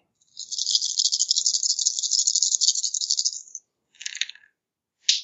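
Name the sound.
dice rattling and rolling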